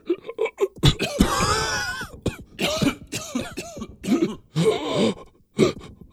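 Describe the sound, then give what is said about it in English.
A person imitates heavy, labored breathing, with a string of loud, raspy, breathy gasps and groans in uneven bursts, some drawn out and others short and sharp. “And you start to hear some heavy breathing coming from the body.”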